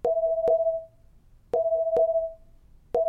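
A phone ringback tone as a voice assistant calls a car phone, repeating in short paired electronic bursts, a steady double-beep rhythm with brief pauses between, clear, with no one speaking.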